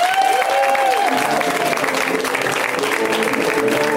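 A comedy show crowd breaks into steady, loud applause for the next comedian coming to the stage, a dense wash of clapping that holds for several seconds, with some cheering and whooping rising above it at the start.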